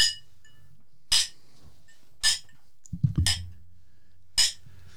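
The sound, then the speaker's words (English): Glasses clink together in a toast, about five bright ringing chimes spaced roughly a second apart, with a few soft thuds and handling noises in between and no talking. “It's a lot of clinks. It's a lot of clinking.”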